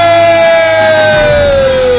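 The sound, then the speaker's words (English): A person imitates a monkey with one loud, sustained hooting call that glides slowly downward in pitch for about two seconds, with no talking over it. “Yeah, that's a good monkey noise.”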